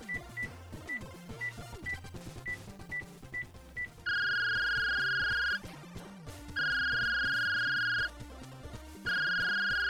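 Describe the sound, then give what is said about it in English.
A slide phone dials with a quick series of short, evenly spaced beeps, then rings in long, loud electronic bursts separated by pauses, all over a busy musical background. “Hand me your slide phone!”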